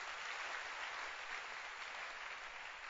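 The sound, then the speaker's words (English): An audience claps their hands together after a prayer, a dense, steady wash of applause, many overlapping claps blending into a continuous bright crackle with no voices standing out. “You can clap your hands.”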